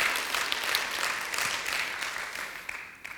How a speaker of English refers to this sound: Come on, let's give him a good round of applause.